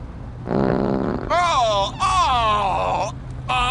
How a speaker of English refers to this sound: Oh, it's just a little flatulence. Oh, a little flatulence? An elephant in the back seat and it wouldn't smell that bad.